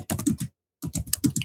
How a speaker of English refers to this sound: typing an essay over there.